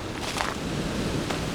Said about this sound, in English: It's too windy of a day to really get many birds singing or audible. You'll probably hear bursts of wind as I talk here.